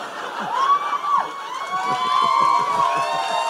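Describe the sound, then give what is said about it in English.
A live audience applauds and cheers, dense rapid clapping running steadily throughout, with a few high whistles and shouts rising over the crowd. “I had to decide whether I wanted to be applauded for something negative or just be thrilled with applause that weren't even for me.”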